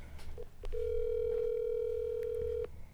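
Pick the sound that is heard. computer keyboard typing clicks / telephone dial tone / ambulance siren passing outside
telephone dial tone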